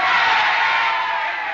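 A political rally crowd yelling and roaring all at once, a loud, steady wall of overlapping shouts and whoops that barely dips across its short length.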